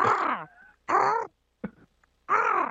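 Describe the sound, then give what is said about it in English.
A person's voice imitates an eagle call: three loud, harsh, wavering screeches separated by short pauses, with a brief squeak between them. “He's a Boston College Eagle. Give us an Eagle cap.”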